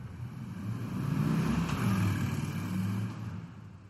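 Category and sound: vehicle, car driving away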